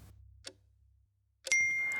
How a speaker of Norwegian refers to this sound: Da tikket den inn. Meldingen fra et ukjent nummer.